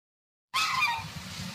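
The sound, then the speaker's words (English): An aggressive goose in a residential neighborhood lets out a loud, harsh honk that bursts in abruptly after a moment of silence, then trails off into outdoor background rumble. “They say they are annoyed and even afraid of an aggressive goose.”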